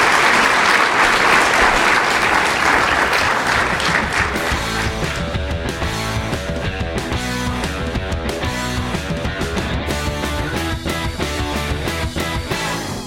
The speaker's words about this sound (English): Okay, well, let's give a round of applause for a wonderful talk. Thank you.